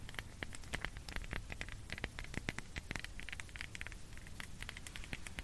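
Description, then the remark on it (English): A raindrop sound effect: a soft, irregular patter of quick light taps, continuing steadily at low volume with no voices. “Like raindrops, you are correct.”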